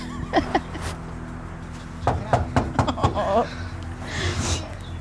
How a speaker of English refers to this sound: I hear someone knocking at the door.